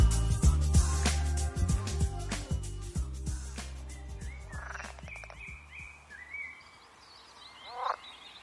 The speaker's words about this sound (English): From the beaches of Connecticut, we travel across the Atlantic to some English wetlands, home to the threatened pool frog. These carnivorous amphibians feed on insects, worms, and spiders, which they trap with an exceedingly long tongue.